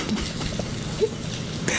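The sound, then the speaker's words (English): Steady rain falling in the desert on a Friday morning, July 3rd, patters down in a dense, even hiss, with scattered drops tapping and no voices over it. “I was going to get up early and get on the road, and when I woke up, it was raining.”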